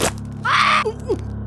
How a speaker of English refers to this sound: A small yelp as it latched onto my second toe and began chewing again.